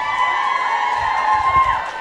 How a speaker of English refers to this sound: Everybody give a round of applause for Nick.